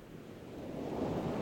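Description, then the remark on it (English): Waves crash and wash against the shoreline on a windy day in a steady, rumbling roar that swells slightly louder toward the end, mixed with gusty wind noise and no voices. “Standing in the front yard on a windy day, I could hear the waves crashing in the shoreline.”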